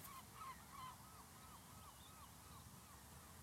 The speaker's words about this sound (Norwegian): Jeg føler den lyden av måker er sånn Akershus-lyd. Jeg føler ikke at det er Hønefoss jevnakerish.